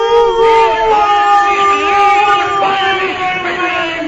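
A dog howls in long, wavering, drawn-out tones that slide up and down in pitch, loud, continuing steadily for a few seconds with no talking.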